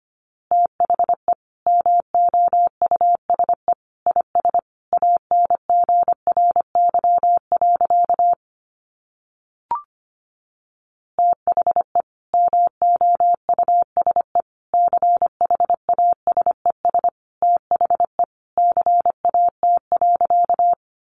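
Rapid Morse code at 25 words per minute: a steady mid-pitched tone keyed in quick dots and dashes, pausing briefly midway after a short click, then resuming at the same brisk pace.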